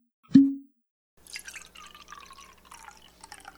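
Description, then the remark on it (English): Whiskey is poured into a glass beside a campfire: one sharp low plop, a brief pause, then a steady splashing, gurgling pour that keeps going. No voices are heard. “Why don't you pull up a seat next to the campfire here and have yourself a little whiskey?”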